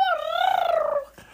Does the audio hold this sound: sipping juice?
no